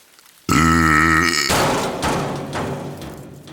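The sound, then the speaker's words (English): A loud burp sound effect for a dumpster burping bursts in with a deep, wobbling buzzy tone, then trails off into a long, rough, rumbling exhale that slowly fades. “Faster it flew, blowing them through the diorama landscape, into the dark room and up out of the tunnel until the dumpster burped them out.”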